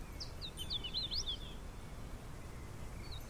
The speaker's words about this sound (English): Is that a prothonotary warbler? No, that's a hooded warbler. That's a hooded warbler.